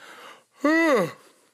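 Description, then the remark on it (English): A single yawn at the end of the day: a breathy inhale, then a voiced, drawn-out groan that rises and falls in pitch before trailing off into a soft breath. “Besides the fact that we get a little bit of yawn here at the end of the day.”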